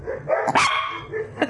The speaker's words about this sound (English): I can hear your dogs. They got upset about that whole idea.